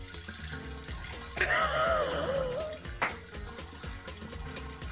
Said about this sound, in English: Oh, God, look, he's pissing like a racehorse.